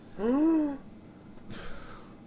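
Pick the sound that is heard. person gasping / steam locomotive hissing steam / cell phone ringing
person gasping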